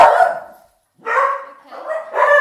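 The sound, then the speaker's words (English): Dogs bark loudly, three drawn-out, yowling barks separated by short pauses, with no talking over them. “They disagree with your opinion on dog girls.”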